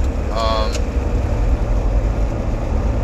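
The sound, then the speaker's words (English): A car braking: a short, high tonal squeal cuts in near the start and stops abruptly, over a steady, loud low rumble of road and engine noise from inside the vehicle. “Why are you hitting the brakes?”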